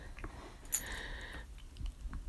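A female dog gnawing on a dried yak cheese block chew toy, with quiet, irregular crunching and scraping, a sharp click partway through and a brief higher squeaky tone, over low background rumble.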